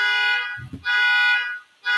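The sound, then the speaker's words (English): A neighbor's car alarm blares loud, its shrill, buzzy tone sounding in long repeated bursts separated by short gaps, with a brief low thump between blasts. “See, Ralph, so mad my neighbor's car alarm just went off.”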